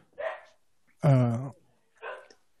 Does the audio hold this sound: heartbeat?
no